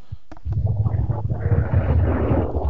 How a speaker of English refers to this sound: I have a plane going over at the moment. Oh, was that a plane? That sounds like a TL Hopper promo to me. But that is rather loud, and I do apologise.